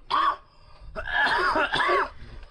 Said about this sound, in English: Okay, so they just said 20X Salvia, and it's these two fucking turds, and they're hitting bongs of 20X, and they're like looking at you, they're like... Oh, shit. So the guys... So they're both coughing up like nasty shit.